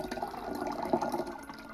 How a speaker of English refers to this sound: please allow me the privilege of pouring you another.